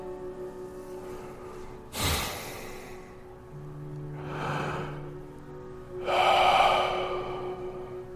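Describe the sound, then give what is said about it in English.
Three slow, deep breaths drawn in through the nose and let out through the mouth, fairly loud, with a sharp inhale near the start and long airy exhales spaced a few seconds apart over a faint background hum. “Focus in on that breathing.”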